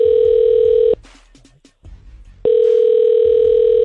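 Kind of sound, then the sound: signal or alarm, telephone dialing a number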